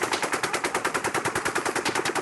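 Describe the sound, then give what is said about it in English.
Sustained automatic fire from an M240 machine gun, recorded on a cell phone in Las Vegas: a fast, steady stream of sharp bursts repeating evenly for a couple of seconds, with a chopping, almost helicopter-like rhythm that slows at the end. No voices. “Sounds like a helicopter, but it's actually gunfire.”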